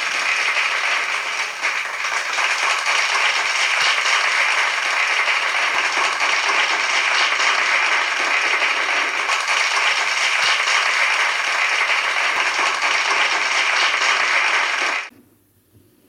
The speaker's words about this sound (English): Do that every day, just for 24 seconds. Clap your hands as loud as you can. every organ in your body will stand to attention and wait for you to give it instructions on what to do.